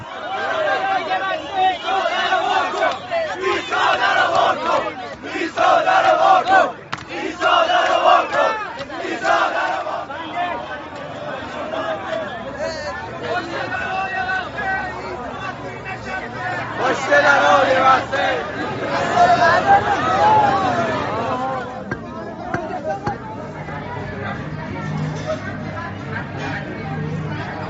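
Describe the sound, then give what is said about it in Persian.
A crowd of young Shia people at a church door in Isfahan on Christmas Eve, wanting to get in, clamors loudly and continuously: many voices shouting and calling over dense chatter, some jokingly calling on Jesus to open the door, with bursts of louder cheering-like swells rising and falling throughout. “خب بعد از 5 دهه ما شاهد اینیم که جوانان شیعه اصفهان به درب کلیسا میرن شب کریسمس و میبینیم با چه شور و شوقی خواهان ورود به کلیسا میشوند و حتی به مزاح یا شوخی میگن عیسی در رو وا کن، خطاب به حضرت عیسی.”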